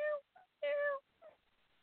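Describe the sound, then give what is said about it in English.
A cat meows four times in quick succession, two long, loud, tonal calls alternating with two shorter, softer ones, with no talking. “Meow, meow, meow. Oh, he may be hungry.”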